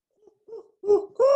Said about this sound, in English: The owl is getting excited at all these rats because this is where they are.